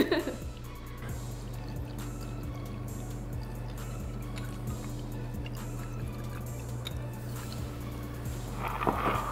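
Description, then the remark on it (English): Scotch whisky being poured into glasses for a drink called The Godfather, Di Serono with scotch: a soft trickling stream with small splashes and clinks over a steady low hum, with no talking. “It's just Di Serono with some scotch. Oh wait, me too.”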